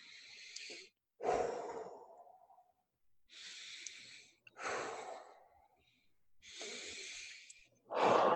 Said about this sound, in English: Taking a few really deep breaths. Really actively feeling the inhales grow, expand. And then the exhales, really actively breathing out and in. And feel, maybe even bring the intensity up, really feeling this active breath.